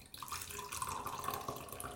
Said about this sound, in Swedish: Nu ska jag bara hälla upp lite kaffe här. Det kanske hörs.